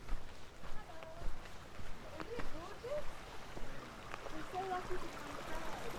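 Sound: creek water flowing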